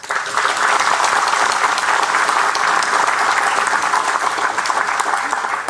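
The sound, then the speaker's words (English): Steady, sustained applause from an audience, a dense patter of many hands clapping at an even loudness throughout, with no talking over it. “I don't know whether you heard that, but everybody clapped.”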